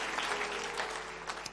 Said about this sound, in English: Give him a round of applause and take your seat.